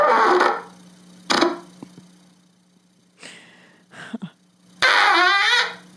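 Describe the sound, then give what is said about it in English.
Someone farts into a trumpet, producing a series of loud, buzzy brass blats that come in uneven bursts with short gaps, the last one longer and wavering in pitch. “He's farting into his trumpet.”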